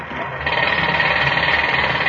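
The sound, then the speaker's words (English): Pneumatic drills worked by many men on a tremendous scaffold hammer away in a loud, continuous rapid-fire rattle, steady, with a dense mechanical roar filling the background and no voices heard. “Men covered it like ants, working with pneumatic drills, shovels, wheelbarrows.”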